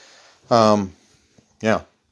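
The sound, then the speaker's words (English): Two harsh, throaty coughs from a person with phlegm in the back of the throat, the first longer and louder, the second shorter after about a second's pause, with no talking around them. “Sorry, cough break.”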